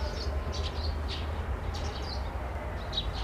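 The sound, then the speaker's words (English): Birds chirp intermittently, short high tweets recurring every half second or so over a steady low rumble of background noise, with no one speaking. “Birds chirping.”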